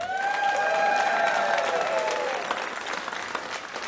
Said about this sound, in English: Anyway, I used to go to PJ, and then I went to, and this is the part where you clap. I went to UWF.